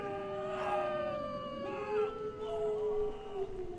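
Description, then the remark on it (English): Wolves howling: several long, wavering howls overlap and slide in pitch, forming a steady chorus over a low rumbling background, moderately loud and continuous, with no one speaking. “Sounds like wolves to me.”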